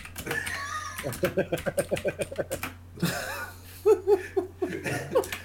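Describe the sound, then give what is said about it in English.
Loud computer keyboard typing as a person types out a sentence, softly: a quick, even run of about a dozen sharp clacking keystrokes over a steady low hum, followed by bursts of laughter. “It is like a typewriter, isn't it? It's so fucking loud.”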